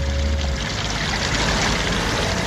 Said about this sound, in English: He hears the frozen waterfall thawing